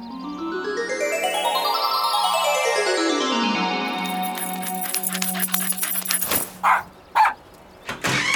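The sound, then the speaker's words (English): A dog named Buster barks in a few short, loud bursts near the end, following a long stretch of rising, sliding tones and busy clatter. No one speaks. “Oh, hello there, doggy.”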